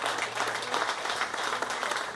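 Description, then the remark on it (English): A crowd at the Piping Live festival claps and cheers steadily, a dense wash of hand claps with a few voices raised in the mix, holding at an even level throughout. “Can we give … a cheer?”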